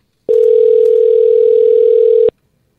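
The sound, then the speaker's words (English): A phone ringback tone of an outgoing call plays as one steady, loud electronic hum lasting about two seconds, then cuts off abruptly, heard on its own with no voices. “Now, you never know if someone's going to answer their phone when you do this.”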